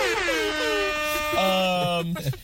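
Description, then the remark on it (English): A loud, sustained air horn blast, apparently imitated by a voice: a brassy, buzzing tone that holds for about two seconds, dips in pitch partway through, then cuts off. “It's yeah, in, insert air horn noise.”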